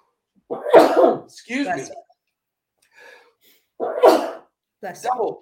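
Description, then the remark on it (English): Two loud, close-up sneezes about three seconds apart, each a sharp explosive burst trailing into a voiced tail, with a faint sound in the pause between them. “Porter and Green, two sneezes, one each for the backcourt of Houston.”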